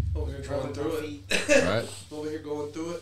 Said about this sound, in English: I'm at the sweat going on, but I think it's from the coughing from this fucking bombshell.